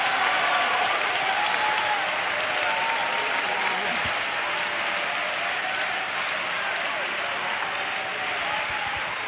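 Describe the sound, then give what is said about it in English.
A church audience claps steadily and loudly for several seconds to thank God for the church, a dense unbroken wash of many hands with faint voices calling out underneath. “If you feel that way, you ought to clap your hands and lift your voice and thank God for the church.”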